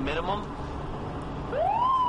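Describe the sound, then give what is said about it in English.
A police car siren wails, a high tone sweeping steadily upward in pitch over the last half-second, after a brief earlier chirp, set against a dense, murmuring background. “The pigs are on them.”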